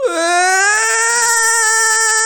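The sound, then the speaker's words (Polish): A baby wails loudly in one long, sustained cry, its shrill pitch holding steady with a slight waver throughout. “ale teraz nagle to dziecko po prostu się rozbeczało.”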